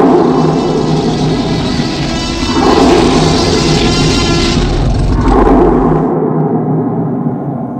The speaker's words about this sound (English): The younger looks over his shoulder one last time at the stronghold. As if sensing his gaze, a horrible roar erupts from their former home.